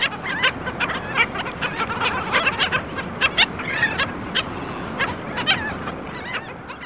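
A flock of black skimmers (Rhynchops niger) on a beach in Texas calls continuously, with many short, nasal, barking notes overlapping over a steady rush of background noise, probably surf or wind.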